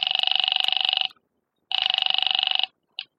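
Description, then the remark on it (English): A telephone rings twice on the line as the second of three George Brewster numbers from a phone book is called, each trilling ring about a second long with a pause between, then a brief clipped burst as the ringing cuts off. “The first number didn't answer. I tried the second.”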